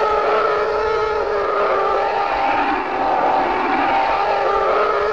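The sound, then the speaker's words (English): A loud, steady whirring hum of a car's very long-tread tires, recorded alongside the moving car and processed with effects and reverb, with a buzzing, slightly tonal texture that holds level throughout without rising or falling in pitch; no voices. “It's very long tread on tires on a car driving past.”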